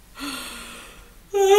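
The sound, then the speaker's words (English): A drawn-out breathy inhale followed by a voiced, rising groan as several people yawn together, fairly loud, with no speech. “Should we all yawn right now? Yes.”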